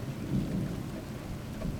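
Steady rain hisses without a break while a deep, rolling thunder rumble swells low underneath, a continuous stormy wash with no voices.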